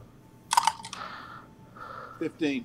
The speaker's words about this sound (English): So then I'm gonna say it's 8 plus. I'm gonna roll the 10-sided dice.